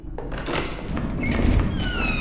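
door being pushed open

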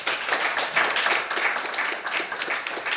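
theatre audience applause

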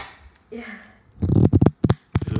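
cards being shuffled

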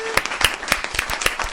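clapping sound effect

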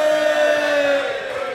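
audience cheering

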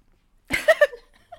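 burp

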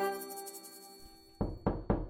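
knocking on a door

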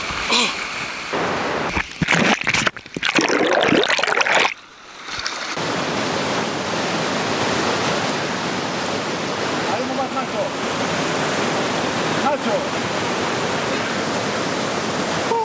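rushing river current

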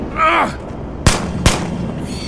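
gunfire

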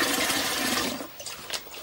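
toilet flushing

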